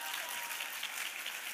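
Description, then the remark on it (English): A church audience claps steadily for a young man, a dense, continuous wash of applause that holds at an even level throughout, heard from within the crowd. “Give him a hand clap.”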